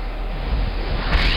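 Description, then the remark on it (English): A brief, muffled rustle of bedding as a sleeper shifts and rolls over in bed at night, set against a steady background hiss with no talking. “No, it's just a rollover.”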